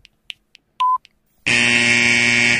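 A few faint ticks and a brief single beep lead into a loud, harsh shot clock buzzer that blares steadily for over a second. No one speaks.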